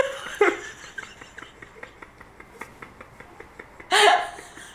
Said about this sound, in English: Bless you.